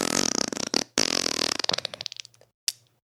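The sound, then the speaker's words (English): A long, wet, sticky fart sputters loudly, breaking into rapid squelchy pops that slow and fade, followed by a short final squeak after a brief pause. “Oh, that was a sticky one. I can smell the banana.”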